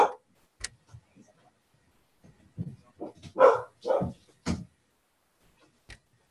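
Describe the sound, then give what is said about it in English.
A dog barks in a few short bursts with some softer whimpering noises in between as it is being put out of the room, with quiet pauses separating the outbursts. “I'm just making the dog out of the room.”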